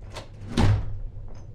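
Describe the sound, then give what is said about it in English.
A door swings shut with one solid, low thud as guests leave, preceded by a faint rattle of the handle, then everything falls quiet with no voices. “And don't let the door hit you your ass on the way out”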